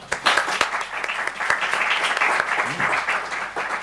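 An audience at a Battle of Ideas session applauds steadily to welcome the speakers, dense overlapping claps forming a continuous bright patter that holds at an even, fairly loud level, with a few sharper individual claps standing out.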